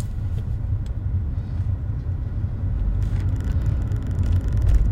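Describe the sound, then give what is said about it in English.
Low, steady rumble of a car moving slowly in bumper-to-bumper traffic, engine droning under road noise with a few faint clicks and rattles, heard from inside the vehicle with no one talking. “I'm trying to go slow in the car in front of me so that I have more time to keep my foot on the gas.”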